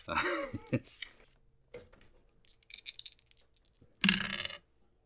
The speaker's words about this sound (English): Okay, roll your damage. It's been so long since I've rolled any damage.